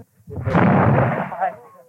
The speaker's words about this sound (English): Two loud reports from miniature cannon high on the city's walls echoed over Catholic Bogside, where the slogans on house gables read, "Peace for Derry."